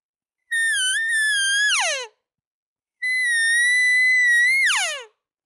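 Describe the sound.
Two long, nasal cow estrus whines, the sound a cow makes when she gets into heat, each holding a steady high, harmonic-rich pitch before sliding sharply downward at the end, separated by a short silence with no talking.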